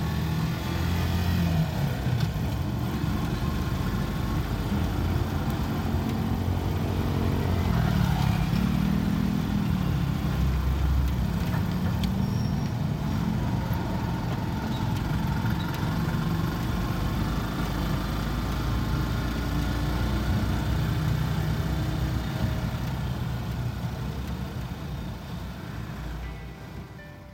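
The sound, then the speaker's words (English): Dense street traffic heard while riding in a motorcycle sidecar past stores selling Christmas decorations and food, rumbling steadily and loud, with many motorcycle and car engines idling and revving, a continuous low roar that eases slightly toward the end. No one speaks. “We're riding through the streets, weaving in and out of traffic, going past all sorts of stores that are selling Christmas decorations and food, people in flip-flops, and lots of motorcycles.”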